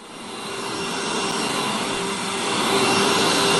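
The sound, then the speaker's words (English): A vacuum cleaner sound played as a sleep sound on a smart speaker runs continuously, a loud, steady rushing roar with a faint motor whine and hum, swelling slightly in volume over a few seconds with no voices. “Vacuum.”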